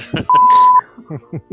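A single steady censor bleep, a loud pure tone lasting about half a second, cuts over speech, with a voice talking just before and after it.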